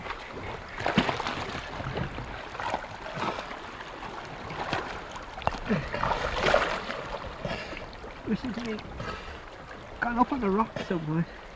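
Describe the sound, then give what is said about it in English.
Water sloshes and splashes as one of the boat's oars dips and churns irregularly beside a small boat, with faint wind noise; voices come in toward the end over the splashing. “This was where I discovered another game, using one of the oars of the boat.”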